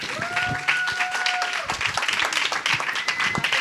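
An audience applauds with steady, dense clapping that fills the whole few seconds, while a couple of sustained high tones ring through early on and again near the end.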